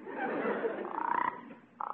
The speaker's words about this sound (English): What's that? It's a frog. Look there, near that rock there. Where? Oh, yeah. Yeah, I see two frogs. Yeah, it's a mama frog with little kid froglet.